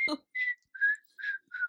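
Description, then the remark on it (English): A person whistles a short, bouncy pop melody in four or five clear notes with brief gaps between them, moderately loud, after a quick burst at the start. “I think I was whistling that the other day, too.”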